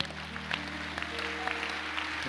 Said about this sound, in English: If you have decided to clap, do it well.